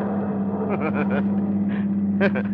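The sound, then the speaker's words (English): A car engine drones steadily as the car leaves downtown traffic behind, a low constant hum, while brief voice-like murmurs rise and fall over it. “You sit behind the wheel, tense. Waiting. Waiting. And then as you leave the downtown traffic behind you”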